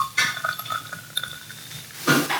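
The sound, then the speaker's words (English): Beer pours into a glass, not a pint glass, with a couple of splashy, fizzing bursts at the start and end, separated by light glassy clinks and ringing tones. No one speaks. “I'm not pouring this beer in a pint glass.”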